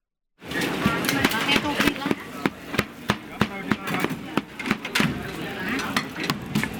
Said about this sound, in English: Let's listen to Malaysian music in a Malaysian marketplace.